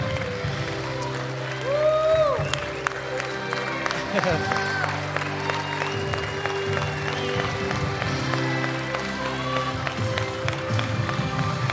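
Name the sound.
audience applauding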